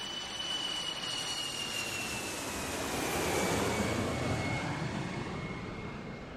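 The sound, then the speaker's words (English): A British Airways jet airliner, Flight 149, landing in Kuwait: a steady engine roar with a thin high whine that slowly drops in pitch, the rumble swelling midway and then easing slightly. “So, Flight 149 landed in Kuwait.”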